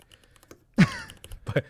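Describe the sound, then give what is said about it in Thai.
A few crisp, clacky keystrokes on a mechanical keyboard, fairly loud, arriving in a short uneven burst after a near-silent start, with no voices. “อันนี้สำหรับคนที่ชอบเล่น แมคานิก คีย์บอร์ดอยากฟังเสียงหรือว่าทำงานอยู่คนเดียวเงียบๆอยากจะมีเสียงคีย์บอร์ดคนข้างๆนี่ลำคาญเล่นๆก็”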